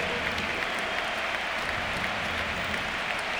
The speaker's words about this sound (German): Auswechslung. Bei Borussia Dortmund mit einem riesen Applaus verabschieden wir unseren Spieler mit der 22. Christian!